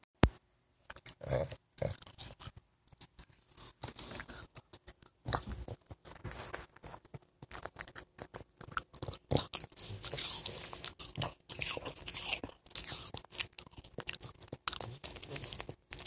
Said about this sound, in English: And just for something completely irrelevant, here is a recording of my dog eating an apple.